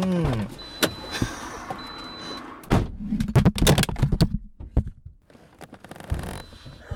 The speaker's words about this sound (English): I thought that would be funny. It turned out to be a little less funny than I wanted it to be. You knocked over the microphone. I didn't mean to knock over the microphone. I just wanted the sound of me opening and closing.